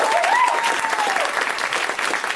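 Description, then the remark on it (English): A comedy show audience applauds steadily for the comics waiting backstage, with dense, continuous clapping, joined by a brief whoop or cheer near the start. “You can clap for them. They can hear you.”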